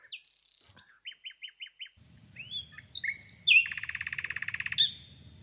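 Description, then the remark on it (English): A nightingale sings: varied whistles, a quick run of five repeated notes, then a loud rapid trill, with a low rumbling hum underneath in the second half. “me more than Cosmo, ruining it, but the Nightingale saving it”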